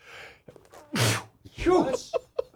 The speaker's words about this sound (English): You can call him if I don't sneeze again.